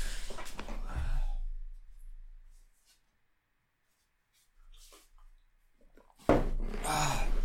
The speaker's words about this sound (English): I'm just going to get water. Sorry.